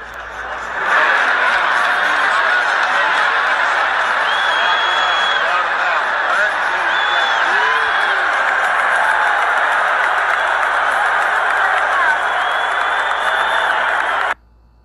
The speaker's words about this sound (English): Biden was at the beach, while Trump was at this UFC match, and the crowd was going nuts. Listen to this.